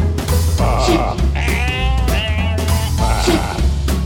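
Several loud, wavering sheep bleats sound close together, overlapping with a strong vibrato quality over a steady low hum, no voices present.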